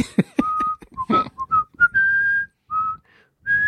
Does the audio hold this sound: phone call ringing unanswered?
no